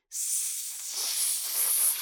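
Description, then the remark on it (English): A voice imitates a snake's hiss, a long, steady hissing sound, airy and bright, lasting about two seconds with slight swells in intensity, with no other sounds. “I'll imitate the sound of a snake and scare you away.”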